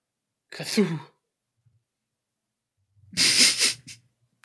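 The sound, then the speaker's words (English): Two short, harsh, breathy bursts from a voice, a second apart, each a raspy cough-like exhalation. Fairly loud, with silence between them. A person imitating the cough-like noise of a squid. “You know, ones that sound like coughs, like...”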